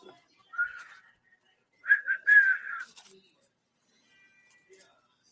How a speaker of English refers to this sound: there is someone whistling for you, Carol. I'm hearing it loud and clear